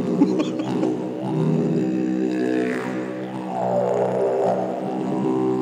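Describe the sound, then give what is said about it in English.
A woman in a band meows and growls into a didgeridoo, its low buzzing drone steady and loud throughout, with wavering, snarling vocal sweeps rising and falling over it like an animal's roar. “So she meows and growls into it.”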